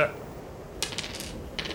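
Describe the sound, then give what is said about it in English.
Dice clatter and tumble across a surface in two short bursts of bright, rattling clicks, the second burst briefer than the first, rolled for a dagger attack in a game. “Let me roll.”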